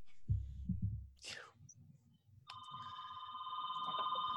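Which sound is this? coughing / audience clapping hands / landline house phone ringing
landline house phone ringing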